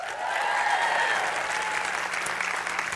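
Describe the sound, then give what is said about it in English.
Steady applause from an audience of Bible study attendees fills the whole stretch, a dense wash of clapping hands with no talking over it. “Now, when I yell out the lady who is your Bible study guru, I'd like to hear a little applause.”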